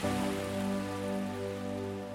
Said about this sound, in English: Breathe deeply as you allow the sounds of the magnificent ocean to wash all over you. Can you hear the gentle sounds of those beautiful waves? So peaceful.